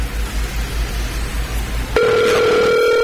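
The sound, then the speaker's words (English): An open phone line hums and hisses for about two seconds as a phone number is redialed after it did not work, then a loud, steady ringback tone cuts in abruptly as the call rings out. No one speaks. “Well, I tried to dial a phone number, and apparently that phone number did not work. So I will try the phone number again.”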